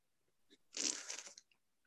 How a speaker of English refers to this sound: If you don't mind, I need to get a sip of water here. 1 second.